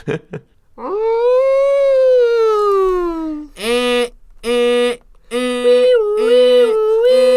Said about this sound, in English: Kyle, can you put in, like, a really annoying blaring siren noise real quick here?